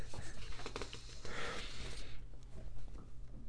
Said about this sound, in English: The best is when my one dog starts snoring loudly. Best sound in the world.